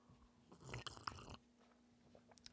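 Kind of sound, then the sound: food or drink, sipping hot coffee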